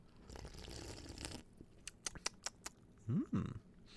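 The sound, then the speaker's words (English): Someone sips a drink: a soft rustle, a few small clicks of lips or a cup, then two quick rising slurps near the end. No one speaks. “All right, I'm going to take a sip.”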